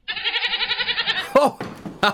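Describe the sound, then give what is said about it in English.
A goat named Hazal lets out one long, quavering bleat, its wavering cry lasting about a second before a person starts talking over brief noises. “You did mention they were escape artists, didn't you?”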